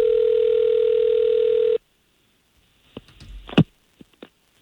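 A steady telephone dial tone hums for nearly two seconds as a radio station in Orlando places a call, then cuts off abruptly. After a short silence come several sharp clicks and clunks, like a phone line connecting or a handset being handled.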